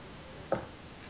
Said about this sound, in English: We can hear you typing. I know you can. You don't know what keys I'm typing though.